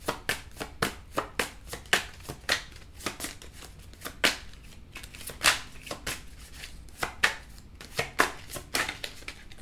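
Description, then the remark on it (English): Tarot cards are shuffled and drawn by hand, a quick series of crisp papery flicks and slaps repeating irregularly for several seconds with no talking. “Let me take a few more cards. May I have another card, please?”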